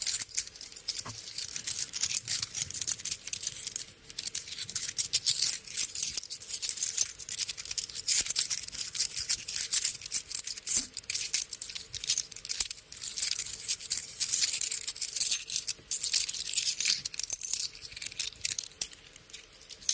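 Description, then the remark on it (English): Continuous bright metallic clinking and jingling of coins and tokens for a local car wash being handled, a busy, steady rattle with no pauses and no voices. “I've got change, but the tokens for the car wash, the local car wash.”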